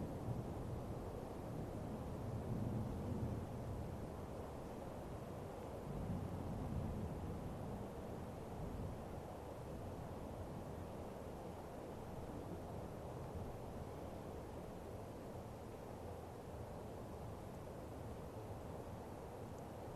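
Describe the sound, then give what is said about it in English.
Distant thunder rumbles low and steady during rain, swelling into a couple of deeper rolls early on before settling into a continuous far-off grumble, with no voices. “Taking in the sound of the thunder, like this temple's ritual drums.”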